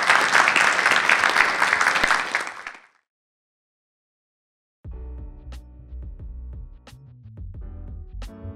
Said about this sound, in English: Well, everybody, that's our show. So glad you're here. Give a round of applause for our panelists.